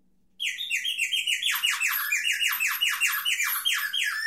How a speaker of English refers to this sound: The next one is animals. I would say this is the goofiest and the funniest category of sound effects. Maybe the most common one that you see in trap cases was the bird whistle.